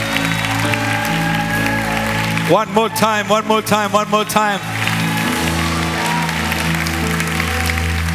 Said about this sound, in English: Clap hands for Jesus one more time.